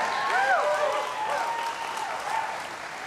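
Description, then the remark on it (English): Sustained applause from an audience, a dense steady wash of many hands clapping at moderate volume, with a few faint higher-pitched whoops or cheers rising briefly over the clapping. “You guys keep clapping.”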